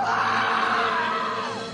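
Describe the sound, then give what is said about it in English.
A loud, sustained human shriek lasting under two seconds, its pitch holding high before sliding downward at the end. No words are spoken. “Leave your message at the sound of the shriek.”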